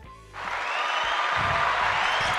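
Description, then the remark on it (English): A round of applause breaks out after a brief quiet moment and holds steady, a dense, bright wash of many hands clapping at once with no voices over it. “Wait, let me get a nice round of applause for you.”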